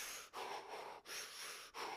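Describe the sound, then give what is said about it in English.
Deep, heavy breathing while running, long airy inhales repeating in a steady rhythm with brief pauses between, roughly three breaths and no talking. “And we just started breathing in.”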